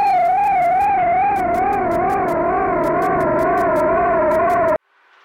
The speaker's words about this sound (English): That's a tiny plane off in the distance.